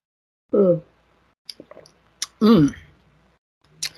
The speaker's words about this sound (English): Oh, Mystery Metaphysician, you're driving me to sip my drink. Hold on.